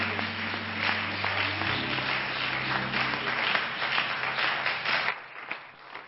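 An audience claps hands in praise, a dense, steady burst of applause with a low sustained organ-like tone underneath, fading out near the end.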